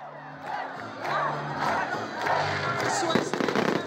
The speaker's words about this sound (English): When the fireworks went off, everybody joked because we all thought it was gunfire. And then we just laughed about it because it was like, it's not gunfire, it's just fireworks to celebrate the 20 years.